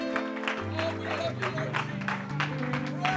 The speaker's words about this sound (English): Let's give the Lord that hand clap of praise this afternoon.